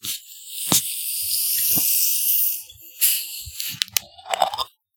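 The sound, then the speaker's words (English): Several drink cans, including a Moon Mist Blue, crack open one after another. Each sharp pop is followed by a loud, sustained fizzing hiss of carbonation, with a few smaller clicks near the end and no talking. “A fresh crack. That would feel weird. Okay. Crack them all.”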